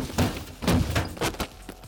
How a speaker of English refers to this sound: Marlowe's car slams into Tags. He goes down, and finally, I get my hands on him.